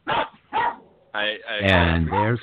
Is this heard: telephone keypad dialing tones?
no